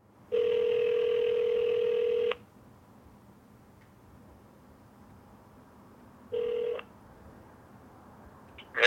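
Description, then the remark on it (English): A telephone ringback tone over the line: one long two-second ring, a pause of several seconds, then a second ring cut short, followed by a faint click as the call connects. “I did a background search for Jenny Heffelfinger and find a marriage record to a Roger Tracy. And I find a phone number.”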